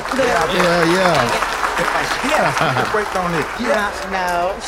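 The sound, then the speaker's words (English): A canned applause sound effect: a steady, loud wash of clapping with whooping, cheering voices layered on top, lasting several seconds without letting up. “All them dudes out there, they applause button.”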